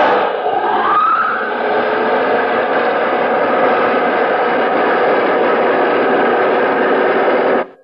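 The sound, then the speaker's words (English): Jet dynamos powering a spaceship: a loud, dense mechanical roar with a whine that rises in pitch at the start, then drones steadily before cutting off abruptly. No voices. “Those jet dynamos you see before you exist. Jet dynamos driven by the harness power of 1,000 suns.”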